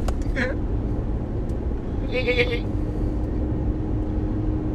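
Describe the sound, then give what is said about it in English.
A person's voice imitates a goat's bleat in a short, quavering burst, with a briefer vocal sound just before it, over a steady low rumble of background noise. “There I go with the goat noises. That's some goat noises.”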